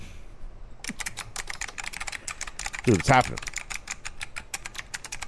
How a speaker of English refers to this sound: I could hear the emails being typed right now, bro.